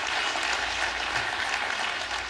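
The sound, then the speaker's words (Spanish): A church audience claps steadily, applauding the Lord during a sermon, a dense wash of many hands sustained evenly from start to finish with no voices over it. “Denle un aplauso al Señor, porque quiero agradar.”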